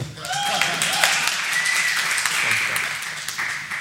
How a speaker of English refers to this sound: No, hold your applause. Never boring. Thank you, Doc. Now applause.